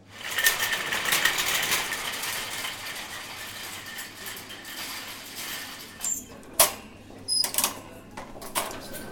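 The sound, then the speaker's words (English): A shopping trolley is pushed back to the supermarket entrance, rolling with a steady metallic rattle and whirring wheels, followed by a few sharper clanks and knocks toward the end. “Noah's sister pushes the trolley back to the shop entrance.”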